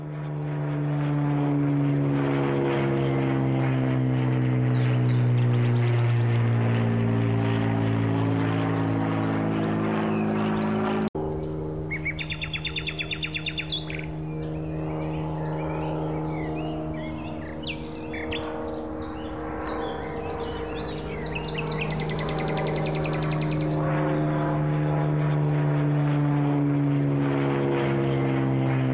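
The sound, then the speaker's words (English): An AI-generated soundscape made to fit a photograph of Godlingston Heath: a small propeller plane drones overhead, its steady buzzing hum loud and continuous for the whole stretch, while birds chirp and twitter faintly in the background partway through. “It's quite an accurate likeness, even down to the small plane flying overhead.”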